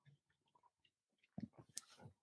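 Someone sips a beer: faint wet mouth clicks, then a louder slurp and gulping swallow with a brief bright clink near the end, no talking.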